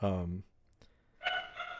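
A dog gives a couple of short barks during a Discord call, the first low and full, the second higher and strained, separated by a brief quiet gap.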